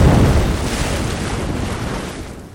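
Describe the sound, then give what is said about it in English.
A heavy rush of splashing water and churning waves as people land in a swamp after an explosion throws them about 30 yards through the air off an island, loudest at the start and slowly washing out over a couple of seconds, with a windy, open-air roar and no voices. “sending all of you careening into the air off of the island into the swamp about maybe 30 yards. You splash down.”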